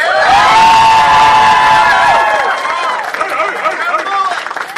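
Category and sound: crowd, audience cheering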